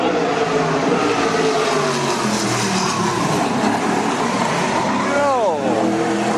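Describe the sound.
Race cars in qualifying roar steadily through a dense wash of engine noise as they slide around a curve, with a sharp whining engine note sweeping down in pitch as a car whips past near the end. Indistinct voices sit underneath.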